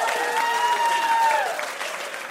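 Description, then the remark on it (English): An audience applauds game show contestants with steady, dense clapping that eases slightly toward the end, while a sustained tone holds over it and then slides downward. “Big round of applause for our contestants.”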